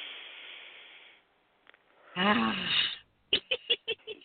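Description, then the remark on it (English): A long, airy breath drawn in during a moment of meditation, a short pause, then a heavy, slightly voiced exhale like a sigh, followed by a few quick, puffing breaths. “Yes, a nice clean breath.”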